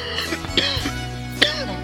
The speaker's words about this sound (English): It's a cough of, 20 years smoking. Clean living. A 20-year clean liver.